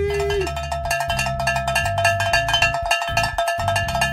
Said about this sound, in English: That's worth a cowbell, baby!